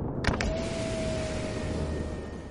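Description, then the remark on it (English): A car's power window motor whirs steadily as a passenger lowers the glass, preceded by a couple of quick clicks, with the low rumble of the moving car underneath throughout. “And so that window button just a few inches away starts to look pretty tempting. Hey, mind if I roll this down?”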